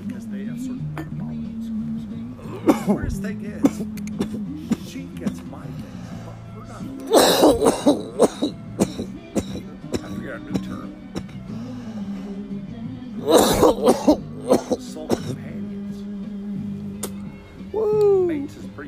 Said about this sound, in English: Sorry, I couldn't hear you because I was too busy coughing like a nut.